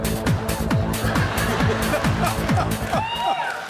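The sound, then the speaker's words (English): Loud electronic dubstep-style music with a steady pulse of downward-swooping bass hits over a dense, gritty texture, ending with warbling synth sweeps. “Is that dubstep or techno dub or acid techno?”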